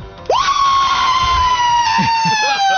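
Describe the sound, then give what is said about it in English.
A loud, sustained yell on the Wes and Walker Show on Sports Radio 92.7 FM WFNZ bursts out after a brief moment and holds for over two seconds at a steady pitch, with a few faint voices murmuring underneath near the end. “you said you wanted to yell. Just let it out. Just go ahead and yell.”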